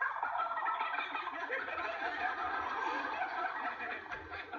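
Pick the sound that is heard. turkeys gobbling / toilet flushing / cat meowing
turkeys gobbling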